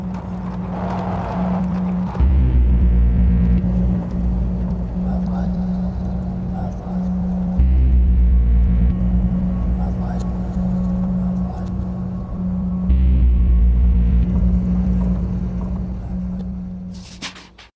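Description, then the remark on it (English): The new diesel engines of the ship the Baroness, many floors down beneath sleeping guests, cough and sputter into life and hum in a deep, steady drone, swelling louder in heavy pulses every few seconds, with faint mechanical squeals riding above the rumble. “Beneath the sleeping guests, many floors down, the engines coughed and sputtered into life. The newness of the machinery still producing squeals and the low hum of diesel combustion.”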